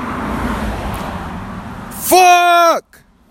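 A BMW car rushes past on a road. A low engine rumble builds, then a loud tonal whine peaks and drops in pitch as it passes by, and everything goes quiet.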